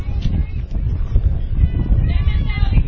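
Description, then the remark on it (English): Loud, gusty wind swirls through a baseball stadium during a game, buffeting the microphone with a deep, rumbling roar that surges and fades unevenly for the whole stretch, drowning out any other detail. “Getting windy here, as you can hear it.”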